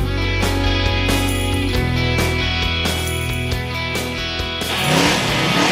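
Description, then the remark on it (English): A loud race car engine roars steadily for several seconds, its throaty drone punctuated by sharp bursts, then shifts into a rougher, sputtering growl near the end. No voices. “Start your engines.”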